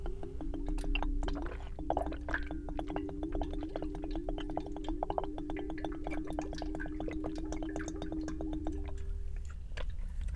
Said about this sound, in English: If I get a little feisty, sometimes, you know, when I don't have any fresh air, I probably have to drink some water, or I might get angry.